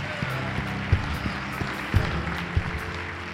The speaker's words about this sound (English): Come on, if you're grateful for Jesus this morning, can we give him one more big hand clap and a shout of praise today?